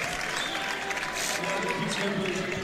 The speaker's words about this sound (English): This crowd here is definitely excited about being here. Yes, they are. As you can probably hear, a well of cheers from the crowd here.